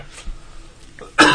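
A single sharp sneeze bursts out loudly near the end, harsh and breathy, after a quiet stretch with only faint breath-like rustles and no talking.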